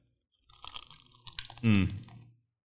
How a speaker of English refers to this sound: Nothing like biting into a good piece of chicken.